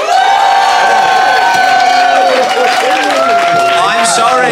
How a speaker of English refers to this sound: if they made the best case, applaud now.